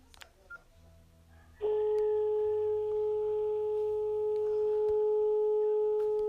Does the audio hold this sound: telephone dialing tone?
yes